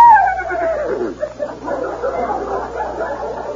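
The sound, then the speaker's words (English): A horse whinny rings out on its own, starting high and sliding downward, then breaking into a loud, shaky, fluttering neigh that carries on for several seconds, from a cowboy's horse named Silverware saying howdy. “Here's my faithful horse, Silverware.”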